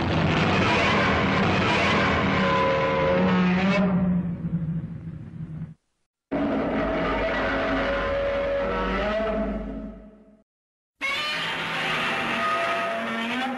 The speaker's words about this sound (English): I want to talk about Godzilla's iconic roar and more specifically how the sound of that roar was made